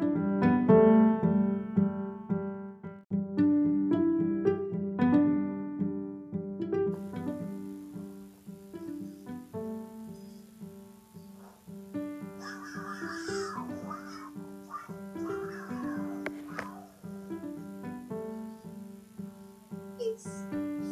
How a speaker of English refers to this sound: Should we play them a sound of a cougar? So that I know what they mean by human scream? Sure.